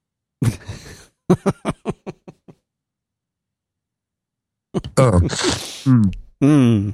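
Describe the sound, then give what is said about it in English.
A burst of close, harsh coughing right into the microphone: one heavy cough, then a quick run of five or six weaker coughs trailing off. After a short silence, voices resume. “So if I were just coughing into the microphone, you would go in and make edits?”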